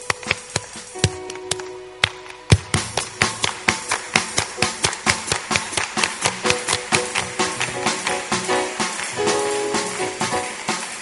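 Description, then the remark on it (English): An audience claps along to a song in a fast military rhythm, roughly two to three sharp claps per second, starting a little ragged and then locking into an even beat over faint sustained tones. “We clap like this.”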